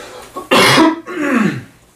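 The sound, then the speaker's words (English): Two harsh coughs in quick succession, not from illness but after riding hard, the first sharp and loud, the second slightly longer and rougher, with no talking around them. “I get gnarly coughs after I ride hard.”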